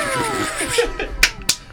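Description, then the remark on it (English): Two sharp, crisp slaps land about a quarter second apart near the end, loud and snappy against a fading tonal background. “Slap.”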